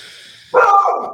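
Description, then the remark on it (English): A dog named Max lets out a single loud, drawn-out bark at nothing, breaking in after a moment of quiet hiss and trailing off slightly at the end. “No, he's barking at nothing.”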